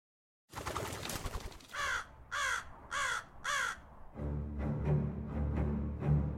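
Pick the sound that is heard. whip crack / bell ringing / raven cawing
raven cawing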